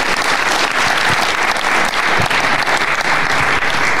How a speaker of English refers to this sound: And if you could join me in applauding, it's Oliver Kaye, the chief football writer at the Times, or some title like that.